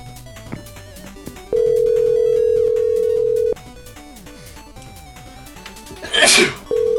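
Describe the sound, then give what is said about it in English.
A single loud sneeze bursts out near the end, following a steady electronic telephone tone that hums for a couple of seconds over faint background talk. “Bless you.”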